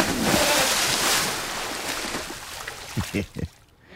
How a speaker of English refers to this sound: I thought you poured, it was like a splash. Take a sip. I didn't know. I'll fill it all the fucking way up. Yeah, it's a giant ass cup.